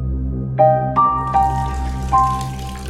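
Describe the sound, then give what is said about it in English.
Water moving in a bathtub as a woman settles into it, with four hollow, ringing plinks of small splashes and drips at uneven intervals over a steady low rumble, with no voices. “On that morning, just as she was settling into the water and making herself comfortable,”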